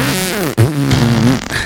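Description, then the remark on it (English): A voice imitates farts with two buzzy, drawn-out blurts in quick succession, loud, the pitch wobbling down then holding steady before trailing off. “then she farted again, and then I farted again.”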